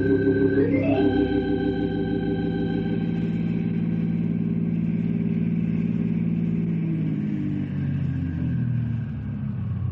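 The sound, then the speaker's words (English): A car engine revs up quickly, then settles into a steady, loud droning hum as the vehicle drives along, easing off slightly near the end. No voices are heard. “Now, you can use one of our cars to take the fellas around”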